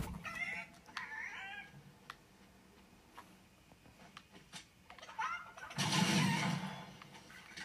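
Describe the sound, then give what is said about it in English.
Chicken clucking and squawking in quick, rising bursts, set to a light ticking beat, followed by a louder, noisier flurry of sound near the end; no one speaks. “This chicken is whacked out, dude. Jamming. We're jamming to some chicken music.”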